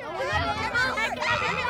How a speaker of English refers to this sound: The bandwagon has officially arrived at Baldwin & Co., a black-owned bookstore in the Treme in New Orleans. And the crowd is pumped. More than 200 third and fifth graders from schools across the city are here for the Unbanned Book Festival.